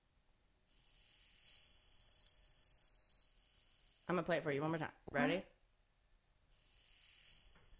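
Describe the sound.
A hummingbird snoring: a thin, very high-pitched whistling tone that rises in steady drawn-out stretches, fading out while someone speaks briefly, then returning at the end.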